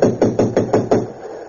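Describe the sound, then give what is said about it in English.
Six firm knocks rap on a locked train compartment door, knocking to wake anyone sleeping inside, in an even, quick rhythm, each a sharp thud with a low body, then the sound fades into quiet. No one speaks. “Sometimes the knock will wake them when the buzzer won't.”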